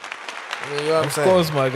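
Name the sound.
round of applause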